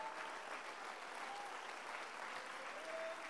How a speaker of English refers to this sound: Can you clap your hands unto the Lord? Come on, if you're excited, can you clap those hands a little bit louder?